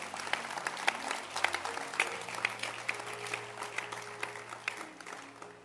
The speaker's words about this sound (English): Clap your hands once again.